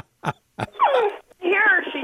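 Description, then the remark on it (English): A large female Labrador whines in drawn-out, moaning tones that slide downward in pitch, preceded by two short, sharp yelps, then a second wavering whine rises and holds. “And if the phone rings, she does this noise she's making right now.”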